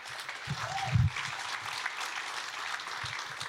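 A steady round of applause from many hands at a church gathering, a dense crackling patter lasting the whole few seconds at a moderate level, with a couple of soft low thumps early on.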